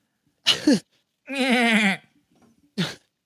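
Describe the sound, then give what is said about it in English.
A loud animal scream, donkey-like, with one long quavering cry bracketed by two short, harsh rasping bursts, each separated by brief silence. “Sound like a horse donkey.”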